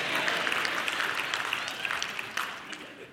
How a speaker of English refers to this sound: Did you hear how many men said amen right there?